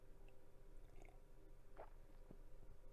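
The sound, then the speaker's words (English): A soft, slurping sip of coffee, brief and quiet, followed by a faint swallow-like click against a low steady background hum, with no talking. “Quick sip of coffee for me.”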